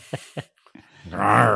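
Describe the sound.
A voice imitates the growling noise a car's engine began making three days after its MOT: two short guttural grunts, then a longer, rough, rumbling growl that swells loud at the end.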